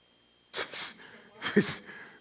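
Two harsh, breathy coughs, each a short burst, come about a second apart, the second slightly louder and rougher. No other sound is heard between them.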